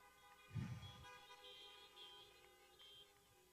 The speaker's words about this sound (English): I got one honk somewhere back there.